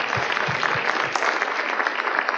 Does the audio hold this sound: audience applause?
yes